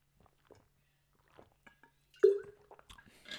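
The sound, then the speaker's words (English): Someone takes a sip of water: a few soft mouth clicks, then a brief wet slurp and swallow, followed by faint smacking noises. No one speaks. “But before we do, sip of that high quality water and then we're getting right into it.”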